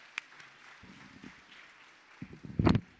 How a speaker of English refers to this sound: Let's give her a clap for walking up to the front.